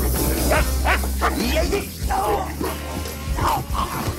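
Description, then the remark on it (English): A dog named Poe barks and yips in rapid, agitated bursts, with a low steady hum underneath and some voice-like sounds mixed in. “Easy. Good dog.”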